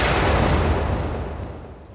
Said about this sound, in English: At 9:02 a.m., the bomb exploded.